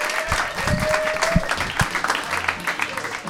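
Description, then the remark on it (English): A comedy-show audience claps steadily for a comedian who played Albert Einstein, a dense patter of many hands at a constant loud level, with scattered cheers and a faint whistle rising through the crowd noise. “Big round of applause for Albert Einstein, Einstein, ladies and gentlemen.”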